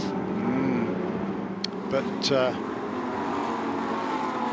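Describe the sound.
Lamborghini Super Trofeo race car engines roar steadily on the track at Elkhart Lake during a 2022 race, with a couple of brief, sharper bursts as cars pass, and a voice murmuring faintly underneath.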